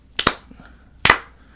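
Slow hand clapping: a quick pair of sharp, bright claps, a pause of about a second, then one more loud clap, with no voices.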